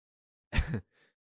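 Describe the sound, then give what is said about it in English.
One sharp, tearful gasp right up against the microphone, then a faint, shaky breath trailing off. Brief and close, with no talking around it. “For the people on audio who can't see me crying, gasping into the mic.”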